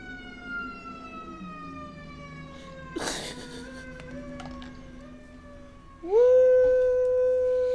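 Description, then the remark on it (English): An ambulance siren wails in long, steady tones with rich harmonics, dipping in pitch, then sweeping sharply upward and growing much louder near the end as it passes. “Hold on, let this ambulance go by.”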